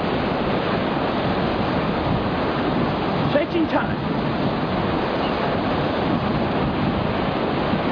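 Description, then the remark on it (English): Steady, loud rushing of ocean waves heard from a boat, mixed with wind buffeting. A voice briefly speaks partway through the continuous wash of water. “Actually riding the waves, getting closer to the destination”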